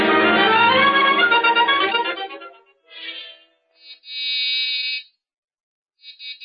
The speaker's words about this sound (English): Yeah, that's why we're ringing your doorbell. No answer.